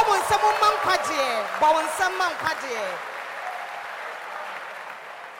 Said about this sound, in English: Clap your hands for salvation.